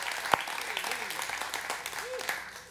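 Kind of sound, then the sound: crowd, audience clapping hands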